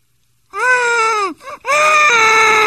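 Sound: baby crying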